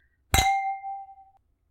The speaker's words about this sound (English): So, do you want to go ahead and cheers and try this one?